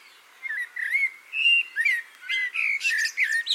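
A blackbird sings a continuous run of varied fluting and warbling phrases, rising and falling in pitch, with no other sounds or voices present.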